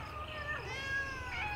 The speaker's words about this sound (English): Do you have house full of cats? No, it's the TV.